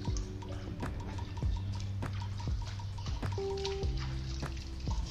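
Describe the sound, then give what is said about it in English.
Light, irregular taps as Lemona vitamin C powder is knocked little by little into water until it dissolves, with soft liquid sloshing and a steady low hum in the background; no one speaks. “So I'm going to go ahead and just tap little by little.”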